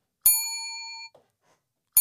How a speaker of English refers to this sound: I didn't think I was going to do the bell this time, but I'll...